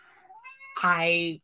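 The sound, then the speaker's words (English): A single drawn-out, loud meow from a female cat: a softer rising start swells into a strong, nasal wail before cutting off abruptly. “I don't know if y'all heard it, but the cat has an opinion on that.”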